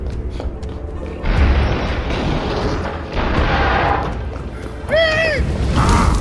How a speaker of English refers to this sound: An explosion in the barracks. Probably nothing, but I'll go check on it.